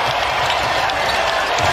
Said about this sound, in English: And these certainly do go to 11. And how about the volume out of the crowd when you crank it to 11?